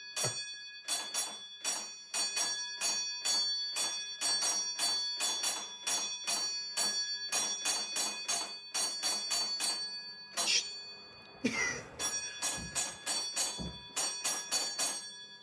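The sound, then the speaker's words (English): Railway signal box block bells ring out coded sequences of sharp, bright strikes in quick groups separated by short pauses, as the stations on either side of the box signal to each other. Loud, with a few dull thumps partway through. “whenever the bell rings, we're hearing two ends of a conversation.”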